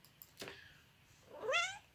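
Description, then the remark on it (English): A cat named Denis lets out a single drawn-out meow, rising then falling in pitch, soft, after a brief thump, in a friend's home. “Oh, my the cat, everybody.”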